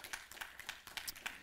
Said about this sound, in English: Give the Lord a hand clap if you agree with that.